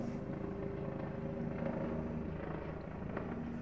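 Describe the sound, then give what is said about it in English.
A steady, low rumbling drone of a helicopter flying overhead, fairly faint, holding an even level throughout with no voices over it. “This helicopter is... I don't know if you can hear it.”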